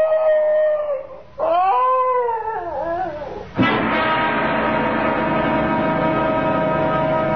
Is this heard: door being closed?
no